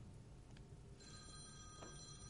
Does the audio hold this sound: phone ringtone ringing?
yes